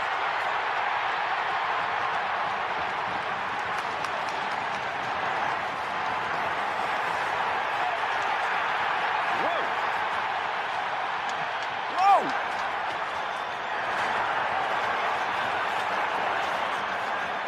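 A hockey arena crowd roars steadily during a heavyweight fight between Delorier and Rempe. It is a dense wash of cheering and shouting with a few sharp whistles and yells rising above it, loud and sustained with no pauses.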